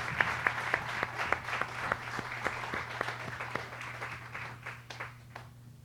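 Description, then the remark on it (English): A crowd gives the band a round of applause, clapping steadily for several seconds, a dense wash of clapping with a few sharper individual claps standing out, tapering slightly at the end over a low electrical hum. “Give our band a round of applause.”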